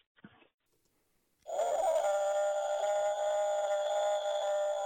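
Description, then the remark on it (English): A person imitates a Bigfoot with one long, loud, steady howl held high and unwavering for over three seconds, after a short faint sound and a pause. “There was our patented, that was this like super long Bigfoot howl.”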